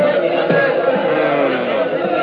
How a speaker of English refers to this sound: Ay, look out the window, Señor Capitan. There is a crowd of people below in the street.